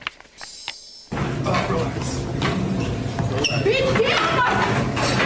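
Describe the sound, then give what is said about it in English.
A young woman hits her manager with a chair during a fight in a coffee shop: a few dull thuds and bangs land amid loud, chaotic crowd noise and shouting voices after a brief quiet start. “This is a young woman picking up a chair. She's hitting her manager.”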